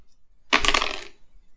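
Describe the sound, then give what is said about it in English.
Dice are rolled for a game, clattering across a hard surface in one quick, bright rattling burst of about half a second, tumbling and clicking before stopping abruptly on a 12. No one speaks over it. “I rolled a 12.”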